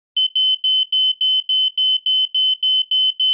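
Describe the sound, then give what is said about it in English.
A smoke detector alarm beeps loudly and shrilly in a fast, steady pulsing pattern, repeating about a dozen times with no pauses, piercing with nothing else audible. “If my smoke or carbon monoxide detector goes off”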